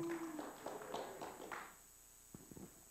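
A few people clap sparsely, a short patter of uneven claps that thins out, followed by a handful of isolated, sharper claps after a brief lull.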